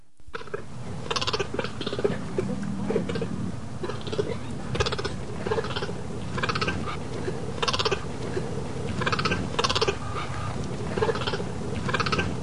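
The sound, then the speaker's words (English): A male cheetah gives a long run of short, sharp bark calls, the bark used to call out to mates, repeating roughly every half second to a second in a steady, insistent rhythm over a constant low background rumble. “That was a cheetah. Really? A cheetah? Yes, it was. And a male cheetah.”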